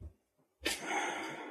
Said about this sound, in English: And just put one hand on your heart and one hand on your lower belly. And just take a few deep breaths.